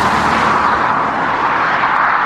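A Lexus 5.0-liter V8 engine in the revised Lexus IS roars steadily and loudly for a couple of seconds, a dense, even rumble with a harsh, broad rasp and no voices.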